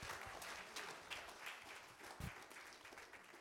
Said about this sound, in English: God, give us a healing ministry again that will testify to the power and glory of God. Somebody clap your hands in this house.